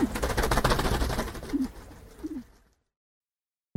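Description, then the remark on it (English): Pigeons coo in low, throaty bursts over a busy fluttering rustle of flapping wings. The sound cuts off into silence before a sudden loud burst at the very end. “Hey, are you going to the Million Pigeon March in Trafalgar Square?”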